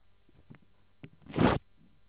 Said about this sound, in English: That was paper ripping.